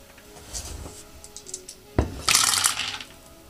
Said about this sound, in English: Dice tower.